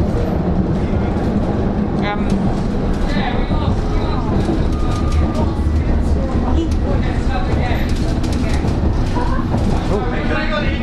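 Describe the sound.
A subway train rumbles and clatters steadily at a platform, loud, with an announcement voice speaking over the constant mechanical noise.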